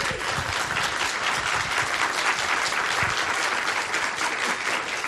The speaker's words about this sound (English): Thank you so much, and just want to give everybody a quick round of applause.